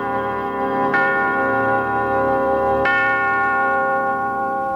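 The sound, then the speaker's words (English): A deep clock bell tolls twice, each stroke about two seconds apart, its rich ringing hum lingering and overlapping between strikes. No voices are heard. “When Scrooge awoke to the tolling clock”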